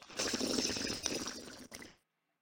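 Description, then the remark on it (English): Steady gurgling and bubbling of water as someone smokes from a bong, lasting about two seconds before cutting off abruptly into silence. “By the way, it was me smoking my broth water.”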